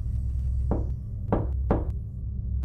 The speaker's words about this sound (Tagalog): Malayo ang bawat pagitan ng pagkatok. Dahan-dahan pa iyon at sadyang napakalumanay. Parang dibilang ang bawat pagtatama ng kanyang kamao sa dekahoy kong pintuan.